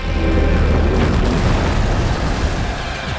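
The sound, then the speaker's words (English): A giant crashes down onto a horde of giants: a massive crashing impact rolls into a heavy, continuous low rumble, loud and booming throughout the three seconds, with a dense roar of debris and no voices. “As the giant faltered, Magni and Vithar used their god strength to push it forward, sending it crashing down onto the giant horde.”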